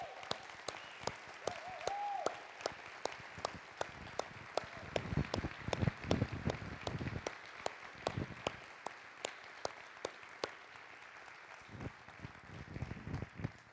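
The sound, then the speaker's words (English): A large audience claps steadily for veterans standing up around Veterans Day, a dense wash of applause with sharp individual claps standing out, sustained for the whole stretch and moderately loud. “We want to acknowledge you and give you a round of applause.”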